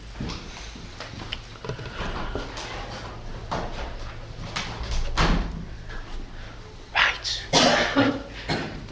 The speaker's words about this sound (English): Should I shut the door? That would be a good idea.